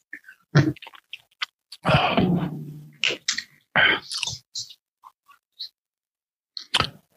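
Loud mouth sounds of someone sipping bourbon: a drawn-out slurp followed by wet lip smacks, tongue clicks and a small swallow, with short quiet pauses between them.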